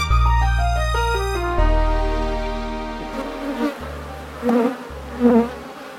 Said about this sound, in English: Wow, well, I'm still surrounded by the amazing sound of bees. What an extraordinary sense.